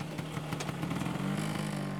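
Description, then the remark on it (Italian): A Vespa scooter engine buzzes steadily amid heavy city traffic in Rome, its low drone holding even, then growing slightly louder and rising a little in pitch partway through. No one speaks. “Ah, now I see why we took the Vespa. This traffic is crazy.”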